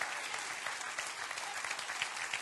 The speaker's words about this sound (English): And while we're clapping today